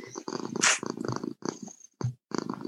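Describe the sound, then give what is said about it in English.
A cat named Babs purring loudly, an excited, throaty, rumbling purr in uneven bursts with a few short pauses and a brief brighter, rougher flare early on. “Wow, listen to that, about that excited purring.”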